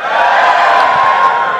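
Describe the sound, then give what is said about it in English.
An audience cheers loudly when asked to cheer if they voted Remain in the Brexit referendum, a dense, steady roar of many voices with whoops and shouts blended together, sustained at full strength throughout without any break. “Give me a cheer if you voted Remain in the referendum.”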